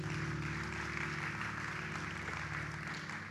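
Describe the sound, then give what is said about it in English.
A church audience claps for God's word after a prayer, a dense, steady wash of applause that holds an even loudness throughout, with low sustained tones humming underneath and no voices. “Come on, why don't you clap your hands for God's word?”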